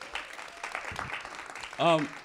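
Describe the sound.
An audience gives itself a round of applause at the speaker's urging, clapping in a dense, steady round lasting about two seconds, ending as a single voice rings out briefly over the fading claps.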